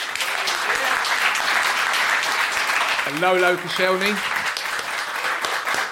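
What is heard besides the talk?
audience applause voting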